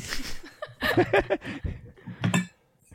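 Someone bangs pots and pans together in a quick, irregular burst of metallic clanks, moderately loud, with no one talking.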